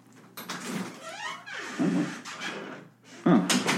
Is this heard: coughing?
no